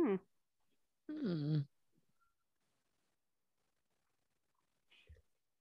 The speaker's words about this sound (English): Hmm. Was that him snoring? Yes. I thought that was you kicking the table. Nope. Sorry, our dog snoring. I thought it was some weird shit going on in the background.